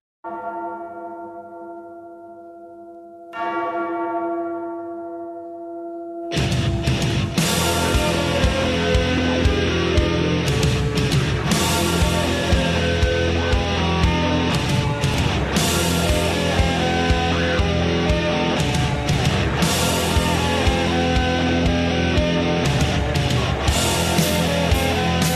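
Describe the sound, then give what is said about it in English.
Two slow, ringing bell tolls with long decaying tones open the sound, then loud, dense rock music with heavy drums and distorted guitars kicks in and continues steadily to the end. “Friday night, little … coming back. Mark Hoke spinning the hits. …, baby.”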